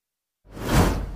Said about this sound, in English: My goodness, you know how to do the swoosh. Oh, my goodness. Hey, the intern made it super easy.